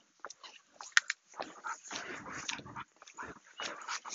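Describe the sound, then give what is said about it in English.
A dog whimpers and lets out short yips in quick, uneven bursts over a few seconds, moderately loud, with no talking. “I'm like try to run up to a dog for 3 seconds and then leave.”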